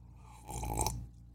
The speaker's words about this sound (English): Hold on while I take a sip of my bean water.